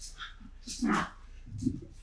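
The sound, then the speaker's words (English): Pet dogs bark and yip in short bursts, with scuffling and rustling between the barks, as they roughhouse with each other. “For those who can't see it in the shot, or maybe you can, my dogs are going at it.”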